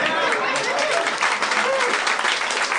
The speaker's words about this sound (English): All right. That's nice to get a... That's probably the first applause he's gotten for that since 1987.